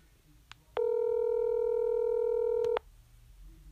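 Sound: telephone dial tone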